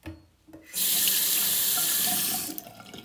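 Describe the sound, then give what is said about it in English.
Tap water gushes steadily into a glass for nearly two seconds, fairly loud, then cuts off abruptly. No one speaks. “So let's just all stop being assholes and drink some water.”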